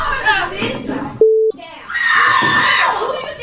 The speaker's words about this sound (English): you can obviously hear it because she screams at him.